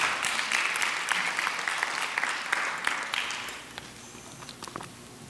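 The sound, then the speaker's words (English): An audience claps, a dense patter of many hands for about three and a half seconds, then thins out into a few scattered claps before fading. “We clap our hands right there.”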